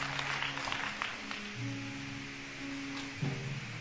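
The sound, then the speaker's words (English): An audience claps steadily for a few seconds for people as they go, a dense patter of many hands over a low sustained hum of music or voices in the background. “Oh, clap for them as they go.”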